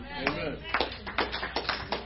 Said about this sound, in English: Amen. Oh, four claps. Amen.